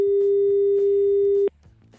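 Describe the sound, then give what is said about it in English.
A steady, loud electronic telephone tone on a radio call-in line, heard as a caller's call drops, holds at a single mid-range pitch for about a second and a half, then cuts off abruptly, leaving faint low background noise. “Whoa. We got the tone.”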